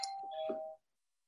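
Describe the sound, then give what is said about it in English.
A single bell rings to end a meditation session, with a clear, steady tone and bright overtones, moderately loud, then cuts off abruptly, leaving silence. No one speaks. “hopefully you get a lot out of it and you notice the difference between how you feel prior to the session and how you feel once you finish, once she rings that bell to bring us back.”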